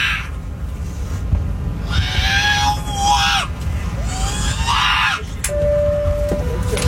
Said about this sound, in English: The baby's freaking out in the background.